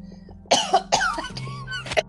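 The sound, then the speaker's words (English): A short fit of harsh coughing: several rough bursts in quick succession, loud and raspy, with a slightly wet throaty edge and no talking in between. “Now listen, his name's cursed if I start coughing, man.”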